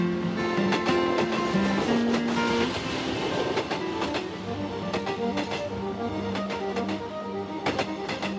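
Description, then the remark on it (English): A train clatters steadily along the rails, evoking Patrick's train journey to Spain in 1922, its wheels clacking in an irregular rhythm over a constant rumble and droning mechanical hum. It sounds fairly loud, with no voices. “Imagine Patrick's train thoughts on the way to Spain.”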